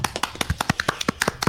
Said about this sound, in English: Hooray! Big round of applause. Whoop, whoop.